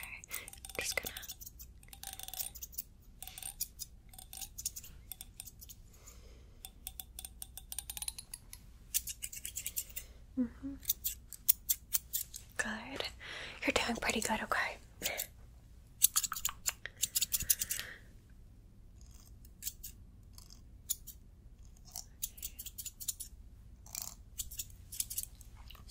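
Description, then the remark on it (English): Scissors snip through hair in quick, crisp bursts, sharp metallic clicks clustering into fast runs with brief pauses, over a soft hiss with faint whispering in places. “I like to do fast cuts, so don't worry.”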